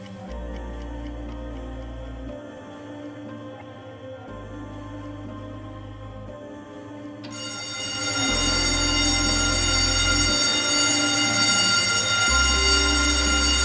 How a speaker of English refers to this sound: With the sounding of the bells, the men bolt out of their bunk, slip both feet into the bunker boots they've carefully set beside the bed, then pull up the suspenders.